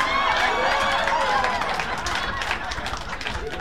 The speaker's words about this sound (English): But she's a good sport. She's clapping too. Give her a hand.